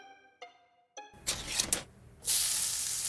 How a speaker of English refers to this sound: Spam. Don't knock it till you've fried it. Sizzle, pork, and mmm.